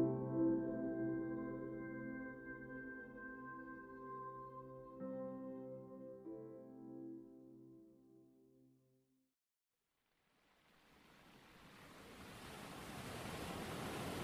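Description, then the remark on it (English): A sustained musical drone fades out into a brief silence, then the steady rushing wash of ocean waves breaking on a beach swells in, growing louder and filling the last few seconds on its own. “You are listening to Ocean Waves, an ambient soundscape for sleep or to play for your next D&D session”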